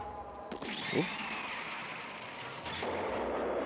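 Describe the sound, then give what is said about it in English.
Explosions from Voltron's groin missiles striking an enemy in the face burst out against a dense, roaring wall of noise, with a sharp blast early on and another heavy boom near the end, loud. “We got the upper hand, and then the groin missiles.”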